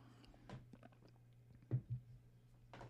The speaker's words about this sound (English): Let me get a sip of water. I got something in my throat here.